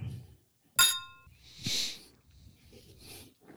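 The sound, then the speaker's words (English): Two glasses of a dark drink clink together once in a toast, bright, with a short ringing tone that fades quickly, followed by soft breathing and sniffing sounds. “All right, here we go. Cheers.”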